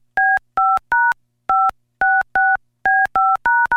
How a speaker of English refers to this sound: Let's see. God, I hope there's nobody out there that knows how to do dial tones.